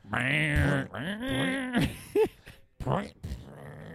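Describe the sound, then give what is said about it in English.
A guttural, gurgling throat hock as someone dredges up phlegm, starting as a drawn-out, groaning rasp and ending in a few short, harsh bursts of noise. “That pre-fart loogie one more time?”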